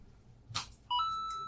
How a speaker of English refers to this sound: And then this is my notification sound.